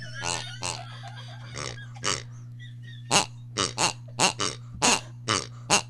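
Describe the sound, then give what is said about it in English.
Pig-shaped squeaky dog chew toys are squeezed over and over, giving about a dozen sharp, honking squeaks in a quick, uneven rhythm, fairly loud over a steady low hum. “See, they're little squeezy dog pigs.”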